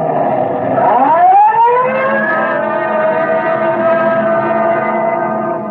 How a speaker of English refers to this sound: Code 3, red light and siren.